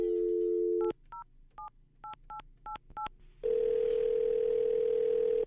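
A phone dial tone hums briefly, then seven quick touch-tone beeps are punched in at an uneven pace to call someone's roommate, followed by a loud, steady line tone. No one speaks.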